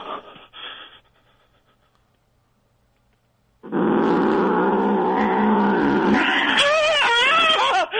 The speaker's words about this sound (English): It bit me in the jugular. The cat did. It got me in the jugular.